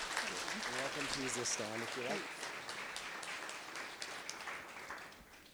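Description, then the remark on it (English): An audience gives a round of applause to welcome a guest speaker, in a steady, dense wash of clapping that lasts the whole stretch. A voice speaks over the first couple of seconds, and the applause holds fairly constant as it tapers slightly. “So why don't we give her a round of applause.”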